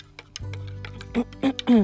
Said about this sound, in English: And stir my coffee.